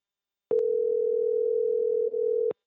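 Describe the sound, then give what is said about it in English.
A single steady electronic phone ringing tone holds for about two seconds, bracketed by soft clicks at its start and end, with no voices. “Well, answering the phone when I call would be a good fucking start.”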